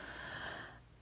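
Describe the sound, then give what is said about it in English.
A dog snores softly, one raspy, breathy intake that fades out after about a second. It's quiet and low in level, with no talking. “I am sitting on the couch and I have a cat in my lap and a dog snoring in the background.”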